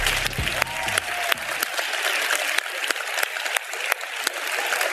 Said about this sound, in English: I wanted you to applaud for them.